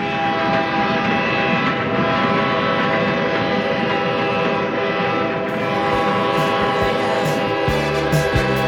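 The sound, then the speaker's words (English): A train whistle blows in one long, steady, loud blast that holds for several seconds over a low rumble as the train approaches the station, with a few heavy clunks toward the end and no voices. “We got a blow whistle. The train is approaching the station.”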